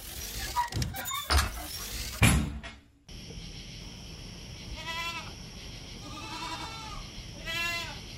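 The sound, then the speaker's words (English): After a burst of clattering and a door-like thud, several goats out in the stables bleat in wavering, quavering cries, spaced a second or so apart, over a steady outdoor hum. “Go walk outside and look for those goats.”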